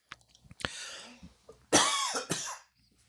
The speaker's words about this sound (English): Excuse me. It was a cough. I'm eating these almonds, these wonderful smoked almonds that Liz is providing me with, and a little piece got stuck in my gullet.